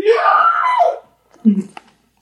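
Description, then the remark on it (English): A person belts out a loud, strained scream for about a second, mimicking the scream at the beginning of the Dragon Ball Z anime opening theme, followed by a brief pause and a short, low vocal grunt. “They have that scream in the first section.”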